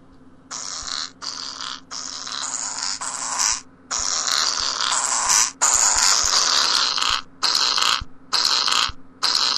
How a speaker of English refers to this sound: I think that's just a tree making a bunch of fart noises. It's Fart Piano.